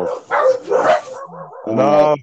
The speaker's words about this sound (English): Oh, fucking dog.